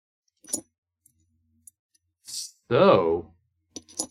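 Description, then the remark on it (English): A few sharp, metallic clinks and clicks ring out at intervals, like coins dropping and tapping together, with a short voiced exclamation between them. “You can hear the coins.”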